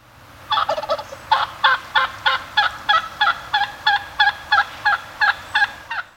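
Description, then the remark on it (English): A wild turkey gobbles in a long, rapid rattling burst of about a dozen evenly spaced, loud pulses, with no other sounds around it. “The Utah Department of Wildlife Resources now estimates there are as many as 25,000 wild turkeys in Utah.”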